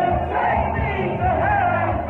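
A big crowd at a DJ night roars and sings along together in a loud, continuous wall of voices, with a low pulsing beat thumping underneath throughout.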